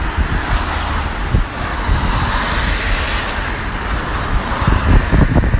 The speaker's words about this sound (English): There's a shitload of cars driving towards me as well, and it's getting windy. We'll see how it goes.